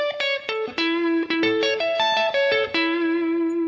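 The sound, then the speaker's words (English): A distorted electric guitar plays a quick lead line in the key of D, using a D arpeggio and then an A arpeggio as the chord changes, each pick attack sharp and sustained, ending on a held ringing note. Loud, no voices. “So that is a perfect example of playing a lead line that is focusing on chord tones.”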